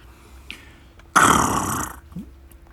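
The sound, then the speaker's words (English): A single loud, rough tiger growl bursts out for just under a second, harsh, then cuts off into quiet background with no talking. “I'm a tiger. I am a famous scary being in the town.”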